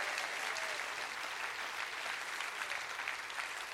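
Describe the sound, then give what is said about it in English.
Steady, dense applause from a church audience clapping continuously during a sermon, a bright crackling wash of many hands with no pauses and no voices standing out. “Come on, clap your hands.”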